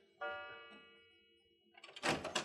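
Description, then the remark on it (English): A library door swings open with a long, drawn-out creak of the hinges, followed by a burst of scraping and a dull knock as it moves. Fairly quiet, with no voices. “The library door is opening.”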